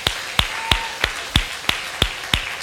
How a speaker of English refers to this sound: Why don't we stand together? Let's clap our hands one more time for Jesus.